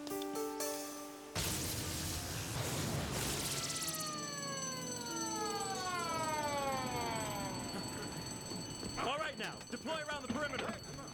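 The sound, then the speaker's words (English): A loud electronic alarm rings continuously, layering steady high tones with repeated falling, siren-like sweeps, then people begin talking over it near the end. “These alarms aren't so false anymore.”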